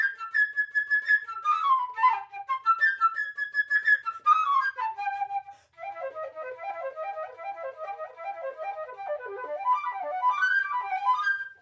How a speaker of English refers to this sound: Birdie's music is played by the high-sounding flute.